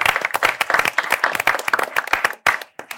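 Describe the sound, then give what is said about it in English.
A crowd applauds with dense, overlapping claps that stay steady and fairly loud for about three seconds, then thin out into a few scattered claps near the end. “Clap it up”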